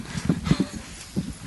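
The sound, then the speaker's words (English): An iPad drops and clatters, a short run of hard, uneven knocks and thuds bouncing, with a final knock after a brief pause. “Did I break my iPad?”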